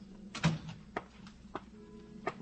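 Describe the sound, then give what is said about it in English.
A door opens at police headquarters at noon, with a series of sharp clicks and knocks from the latch and handle, spaced unevenly over a low, steady background hum, moderately loud. “Noon at police headquarters, the opening door.”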